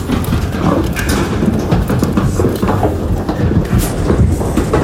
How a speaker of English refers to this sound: And they'll be shipped to a feed yard. Feed yard's going to be in Dixon, Nebraska. Irwin Cattle Company. Here we have cattle being loaded in the trailer.